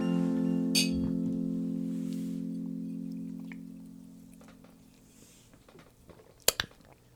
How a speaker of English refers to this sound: Absolutely. So to that, my friend, bottoms up.